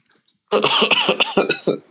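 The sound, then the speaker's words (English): A loud burst of coughing during a moment of silence, several rough hacks in quick succession after a brief silence, trailing off near the end. “And you coughed.”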